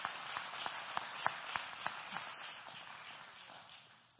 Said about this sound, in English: Let's give Jesus a hand clap. Hallelujah. Hallelujah.